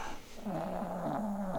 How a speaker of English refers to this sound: Even the dog is groaning about it.